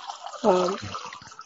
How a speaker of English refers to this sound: I hope you're pouring some water, Hoda, and not doing something else. Okay, good. That was water.